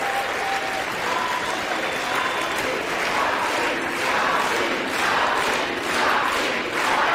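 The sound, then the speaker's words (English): Legislators in the House chamber in Washington, D.C. cheer and applaud steadily for Hakeem Jeffries during the vote count, dense clapping mixed with whoops and shouts, loud and sustained throughout without pause. “Oh, yeah, they're getting excited. They're way excited. Look at that, cheering together.”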